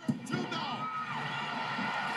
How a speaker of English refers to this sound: The crowd, again, you know, I'll turn it up here a little bit here.